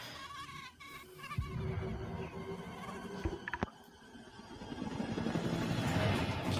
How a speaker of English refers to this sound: Also, I'm sure glad mosquitoes don't sound like that anymore. It was loud as hell.